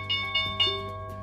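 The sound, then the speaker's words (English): A stock market closing bell rings in three quick metallic strikes, each leaving a bright, sustained ringing tone that carries on and slowly fades after the last hit. “I'm also trying to figure out how to record this live so that the closing bell can be live.”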